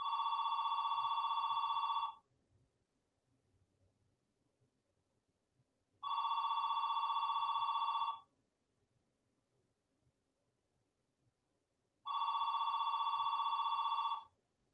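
A telephone rings three times during a Buddhist Sangha talk and is left unanswered, each ring a steady, bright electronic tone lasting about two seconds, separated by roughly four-second pauses of near silence. No one speaks.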